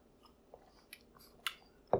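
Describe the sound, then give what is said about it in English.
Someone takes small sips of white Japanese sake, with a few short, quiet slurping and mouth sounds spaced apart, the last one the loudest, and no talking. “Let's take a sip of this first.”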